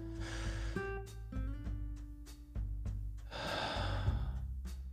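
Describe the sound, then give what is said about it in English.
A deep diaphragmatic breath drawn in and slowly let out, the airy rush clear, set against soft sustained musical tones with no one speaking. “And feel it expand. It's called diaphragmic breathing.”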